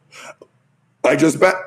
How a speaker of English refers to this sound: I just belched. Hashtag unprofessional.